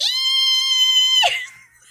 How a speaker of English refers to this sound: Like the highest pitched screaming, because the tarantula won't leave me alone.